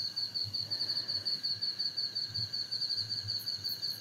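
At night, heard from a bath on a balcony under the stars, a steady, rapidly pulsing cricket trill runs through the whole scene, with a few faint high bird chirps near the end and a soft low rumble underneath; nobody speaks.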